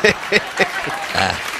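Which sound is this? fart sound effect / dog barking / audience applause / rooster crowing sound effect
audience applause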